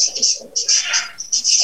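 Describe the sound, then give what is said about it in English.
A marker squeaks against a whiteboard in a run of short, high, scratchy strokes, close by and fairly loud, with brief pauses between squiggles. “I can hear the marker making like squiggly sounds.”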